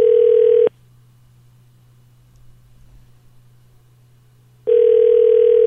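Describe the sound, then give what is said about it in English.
A telephone ringback tone purrs steadily, breaks off for a long silent pause of about four seconds, then starts ringing again, clear as if heard through the phone line, on a call to a number in Alberta. “Doesn't that mean it's still ringing?”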